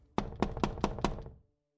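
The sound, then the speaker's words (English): Two people knock five firm times on a wooden door on an upper floor of an old residential building, reached by a dilapidated wooden staircase, in a quick, even rhythm, fairly loud, each a short hollow thud, followed by silence. “The pair continued their climb up the dilapidated wooden staircase, reached the next floor, and then knocked.”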